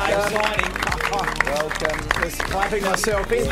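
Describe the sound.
A round of applause: steady, dense clapping runs throughout at a fairly loud level, mixed with voices talking and cheering over it.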